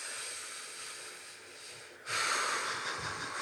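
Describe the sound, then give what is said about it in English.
A long, airy breath drawn in slowly, then a louder, rushing exhale about two seconds later, with no talking, as part of a breathing exercise counting 24 breaths in and out. “No, we're breathing.”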